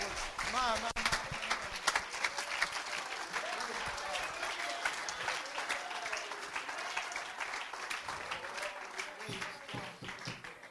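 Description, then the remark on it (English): An audience claps their hands together in a dense, steady burst of applause that continues for about ten seconds, with scattered voices mixed in beneath the clapping. “Let's clap our hands.”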